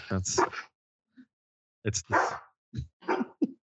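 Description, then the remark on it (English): A dog barks in about five sharp, loud bursts, some doubled, separated by short irregular pauses, with no other sound in between. “Sorry, that ain't dogs barking.”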